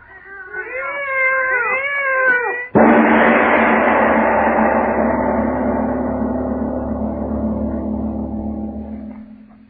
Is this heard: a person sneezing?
no